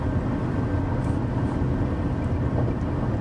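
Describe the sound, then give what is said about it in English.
A steady, low rumbling drone fills the space without a break, the muffled roar of tires and engine heard from inside a vehicle hauling a trailer at speed on the 407 toll highway with light traffic. No voices are present. “But we're on the 407. Lot less traffic.”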